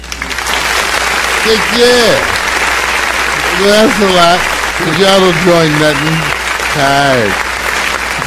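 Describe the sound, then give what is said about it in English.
Steady, dense applause fills the whole clip at a loud, even level, while a man talks over it in a few short bursts. “So I want to give you guys some applause.”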